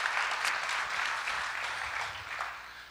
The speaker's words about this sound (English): Yes, let's clap for Jesus. Thank you, Lord.